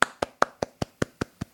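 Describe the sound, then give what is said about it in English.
A single person gives a slow, polite, tepid golf clap, about nine soft, evenly spaced claps over under two seconds, fairly quiet with no voices. “That was tepid. That was a golf clap. I gave you the golf clap.”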